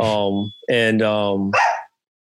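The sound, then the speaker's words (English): A dog barks loudly: two drawn-out, tonal barks in quick succession, followed by a short, rough huff, then silence. “damn dog.”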